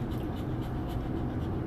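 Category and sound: animal, dog panting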